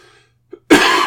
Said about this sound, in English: Yeah, there's coughing as well. Still can't shake this cough.